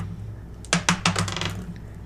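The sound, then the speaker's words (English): A die rerolled in a tabletop game gives a few sharp clicks as it tumbles and bounces on a hard surface, three distinct knocks followed by a brief rattle as it settles, over a low steady hum. “I got a 1, and then I got a dice that fell in my lap. Reroll that die.”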